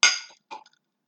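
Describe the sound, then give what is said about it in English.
Cups clink together in a toast: one bright, ringing knock that fades, then a quicker, lighter clatter of a second touch, with no talking. “Well, everybody, cheers.”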